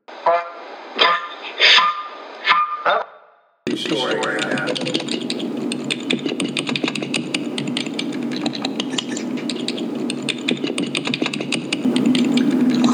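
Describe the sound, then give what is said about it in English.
Rapid, uneven clicking of computer keyboard typing continues against a steady background hiss, following a few short, horn-like tones at the start. “is typing.”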